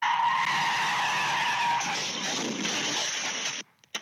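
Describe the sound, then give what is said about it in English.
Car tires screech loudly and continuously for several seconds as a car driven by a teenager comes down the road before crashing into a Vacaville home, a harsh high-pitched squeal with shifting tones, then cut off abruptly. No voices. “If you remembered where the teen or whoever crashed into a house, and you hear the screeching coming down the road, you knew it was going to happen, and here it is.”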